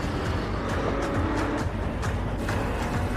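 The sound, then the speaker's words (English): A Dodge Charger's engine roars and revs continuously, loud, with rumbling low-end and brief bursts of higher whine as it accelerates, in a car commercial featuring Vin Diesel, with no talking. “That's Vin Diesel, just car sounds.”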